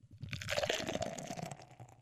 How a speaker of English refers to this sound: That pour sounded so good you'd swear it was from a sound effect library.